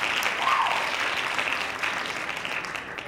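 hand clapping applause

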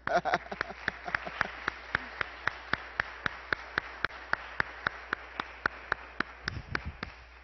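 audience clapping in church

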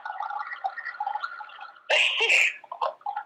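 tap water running

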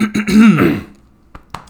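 throat clearing

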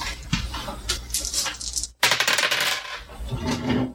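dice rolling and clattering

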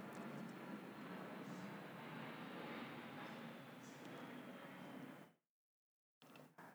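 airplane flying overhead

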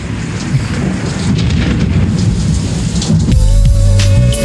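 rain

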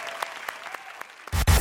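applause and cheering

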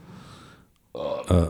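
burp

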